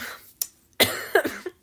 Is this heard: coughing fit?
yes